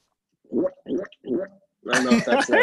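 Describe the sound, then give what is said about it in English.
Someone imitates a guttural throat-clearing noise: three short, low rasping bursts, then a longer, louder, harsher gravelly rasp, almost like gargling. “Yeah, it reminds me of that noise that you make in your throat when you're clearing your throat.”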